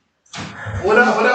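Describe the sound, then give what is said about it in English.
A door opens with a sudden thump and rattle as kids arrive, and excited voices immediately spill in over it, building into overlapping chatter as people arrive. “Yes, you forgot to unlock the door.”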